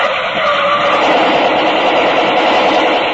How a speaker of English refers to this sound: The car approaching was coming at top speed. Didn't slow down as it neared the roadblock.